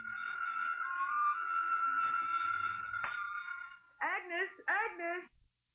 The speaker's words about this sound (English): Somewhere in the living room, the phone rings.